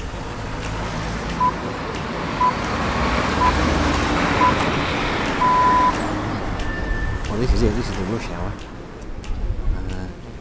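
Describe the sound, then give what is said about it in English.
Busy mid-afternoon town-centre traffic builds up quickly as people leave for home, filling the scene with a steady rumble of car and truck engines, punctuated by evenly spaced reversing beeps and a brief higher tone, with faint voices in the background. “Traffic builds up almost in an instant.”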